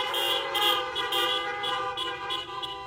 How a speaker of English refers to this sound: Give the Lord a honk praise today.